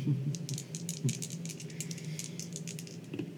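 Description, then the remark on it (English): Dice rattle and clatter in a quick, continuous burst of small clicks and knocks, fairly loud, lasting a few seconds with no voices over it. “Let's see what the dice say.”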